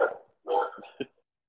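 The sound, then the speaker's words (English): A dog barks twice, a longer harsh bark followed by a short sharp one, with a brief vocal sound just before. “See, even your dogs are complaining.”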